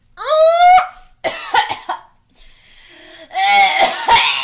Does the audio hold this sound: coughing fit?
yes